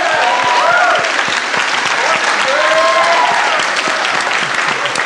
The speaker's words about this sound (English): And I want everyone to just give an insane round of applause for all of these very smart people.